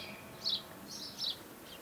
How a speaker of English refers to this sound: The blackbirds are phenomenal.